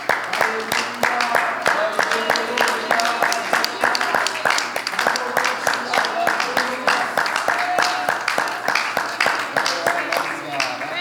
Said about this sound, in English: Let's clap our hands to God today.